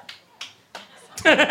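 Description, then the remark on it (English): A few sparse, isolated hand claps, three sharp dry hits spaced unevenly apart, then a loud bleating-like voice cuts in and carries to the end. “The one lonely clap was like, I believe in love.”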